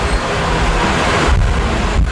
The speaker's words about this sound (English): It is kind of windy out here, huh? Mm-hmm. I think the wind just picked up, too. Oh. Yeah, it feels awesome.